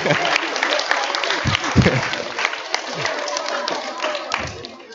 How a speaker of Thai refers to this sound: ไม่ต้องปรบมืออ้าวบอกไม่ต้องปรบมือเลยปรบใหญ่เลย